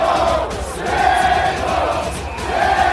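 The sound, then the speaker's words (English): A dense crowd of baseball fans at Fenway Park screams and jeers at former Yankee A-Rod as he tries to report for Fox, shouting about Bennifer 2.0, in a steady, loud roar with overlapping shouting voices rising in waves and no clear individual words. “It was nonstop trolling as A-Rod tried to report for Fox with fans screaming about Bennifer 2.0.”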